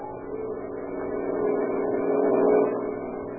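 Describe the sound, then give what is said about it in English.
Steady traffic noise from cars speeding along a wide cement highway leading out of Olympia, Washington, early on a September morning in 1936, with one vehicle swelling louder as it rushes past and then fading. No voices are heard. “On the wide cement highway leading out of Olympia, Washington, two boys stand, thumbs pointed south in the familiar gesture of the hitchhiker, and watch the steady line of cars as they speed by.”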